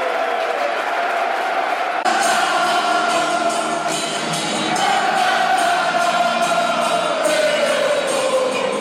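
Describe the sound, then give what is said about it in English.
A large football stadium crowd cheers and chants in a dense, continuous roar, with rising swells of voices and whistles carrying across the whole stretch, loud and unbroken, in quite warm weather. “Crowd in good voice.”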